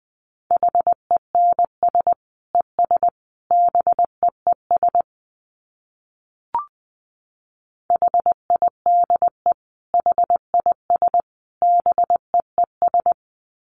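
Morse code sent at 20 words per minute: a steady single-pitched tone keyed into short dits and longer dahs in quick groups, with a brief click and a pause in the middle.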